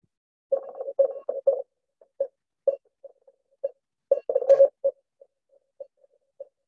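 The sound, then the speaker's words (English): A single steady tone beeps out a secret environmental message in Morse code, short dots and longer dashes in irregular bursts with brief gaps between them, clear with no talking. “I'm hoping you can hear Morse code on the podcast. It's dots and dashes.”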